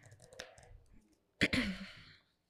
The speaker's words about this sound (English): As we are, like, we had a spades table shuffling these cards.